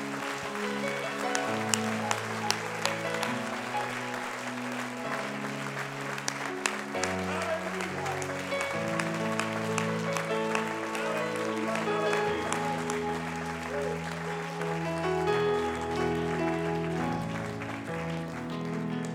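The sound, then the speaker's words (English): An audience claps their hands unto the Lord in a steady, dense wash of applause, carried over sustained keyboard or organ chords that shift beneath it, with no speech. “In Jesus' name, with all of your might, would you clap your hands unto the Lord?”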